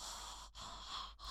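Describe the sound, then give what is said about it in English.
A voice imitates heavy breathing: three loud, breathy, airy pulses in quick rhythm, with brief pauses between each exaggerated inhale or exhale. “Well, okay, listen, like as actors, we like to study different people, and I think there's something really funny about heavy breathing.”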